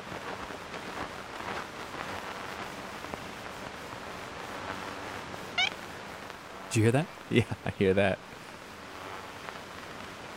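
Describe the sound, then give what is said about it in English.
An ivory-billed woodpecker gives short, nasal honk calls, faint, heard a few times through the steady hiss of an old recording made in 1935 by the founder of the Cornell Laboratory of Ornithology, with people briefly talking over it. “So that little honk? Uh-huh. That's a recording of the ivory-billed woodpecker?”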